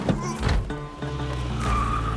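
A sheriff's car engine roars as tires squeal with a rising, whining screech while the Dillinger gang drives it onto the highway, building toward the end over a dense, busy background.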